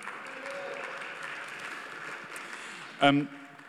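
An audience applauds with steady, dense clapping that holds an even level throughout, and a short, louder vocal whoop or cheer breaks through near the end.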